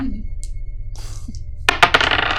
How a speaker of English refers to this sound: Can you roll two more positive dice? Sure.